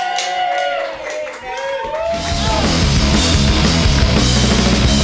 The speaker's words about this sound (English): Clap your hands wildly for Alyssa Westerlund. Yay!